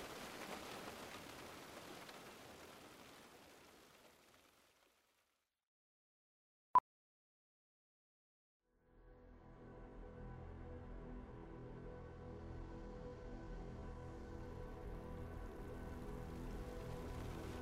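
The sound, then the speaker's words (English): Steady rain hisses, then fades to silence, broken only by a single sharp click. After a few seconds a heavier, deeper downpour swells back in and keeps pouring without any voices. “The rain continued to pour as Datu and I dug deep holes into the wet ground.”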